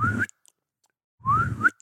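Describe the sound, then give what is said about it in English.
A person whistles twice to call a dog back: a short rising whistle, a pause, then a longer one that sweeps upward again, both breathy and fairly loud, with no talking. “Learn how to whistle really nice.”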